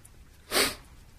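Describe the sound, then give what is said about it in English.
A single sharp, breathy sneeze bursts out loud, lasting about a quarter second, with quiet room tone before and after and no talking. “I've got to sneeze.”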